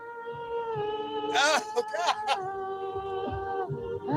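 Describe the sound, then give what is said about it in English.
A singer sings off-key on an isolated vocal track with no accompaniment, holding long, steady notes broken by a few swooping, wavering slides in the middle of the phrase, fairly loud. “This is … singing.”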